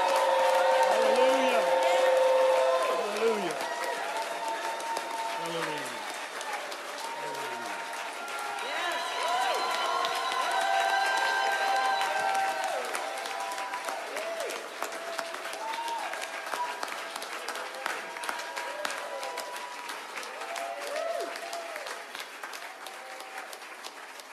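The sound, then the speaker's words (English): A large audience claps and shouts to God in worship, dense applause mixed with whoops and raised voices that swells loudly, dips, then surges again and continues steadily throughout. “So I think that deserves us all just tearing the roof off of this place by clapping our hands and shouting unto God with the voice of triumph.”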